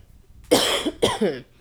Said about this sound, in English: Excuse my cough, y'all. Allergies are really playing with me.